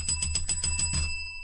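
A bright bell rings in a quick trill of about seven rapid strikes, then its clear metallic tone lingers and fades, signalling quiz answer numbers being locked in. Crisp, with no voices.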